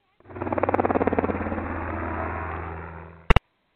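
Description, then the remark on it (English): Helicopters fly overhead at a beach on a June morning: a loud engine roars with a rapid, rhythmic rotor chop that fades into a steady, droning whine, then cuts off with a couple of sharp clicks. “Well, the sight and sound of those helicopters overhead might be one thing wrong.”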